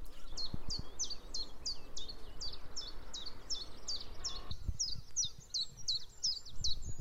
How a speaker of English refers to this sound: And that's also a chiff chaff, isn't it? Yeah, but there was a wren in there. Chiff chaff, chiff chaff, chiff chaff, chiff chaff.